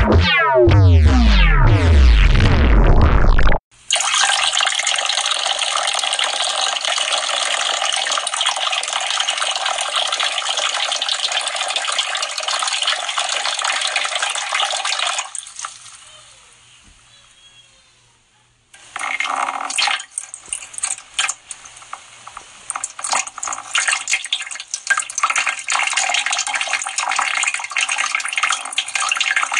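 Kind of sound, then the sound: sound effect, urination sound effect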